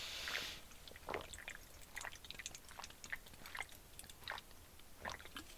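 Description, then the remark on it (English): Someone gulps down a bubbly drink that has gone flat, a run of wet swallows and small mouth clicks over about five seconds, quiet and with no talking. “I gotta take a sip of my bubbly here”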